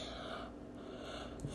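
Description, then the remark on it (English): A child's yawn, a drawn-out breathy exhale with a soft voiced edge, fairly quiet, with no talking over it. “You're too young to be yawning like that.”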